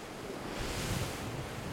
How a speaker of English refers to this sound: Lunok, surge, the swelling, rising of the waters, river or sea. That submerged our land, submerged even a mountain.